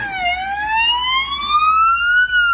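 A loud Victorian police car siren wails, a single long tone dipping briefly then climbing slowly in pitch, with a low traffic rumble underneath and no talking.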